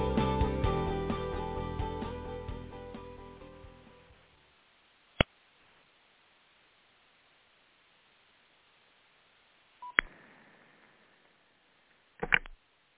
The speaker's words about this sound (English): I'm pushing the wrong buttons on my phone.